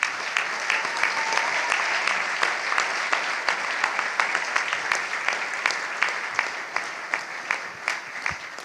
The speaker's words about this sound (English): Now we can applaud.